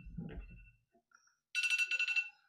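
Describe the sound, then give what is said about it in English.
A phone's electronic ringtone suddenly chimes, a loud, bright, rapidly pulsing warble lasting under a second, preceded by a soft low thump and a brief quiet pause. “Oh, where's the phone? Oh, there it is. it's 1:11. Time to end the video.”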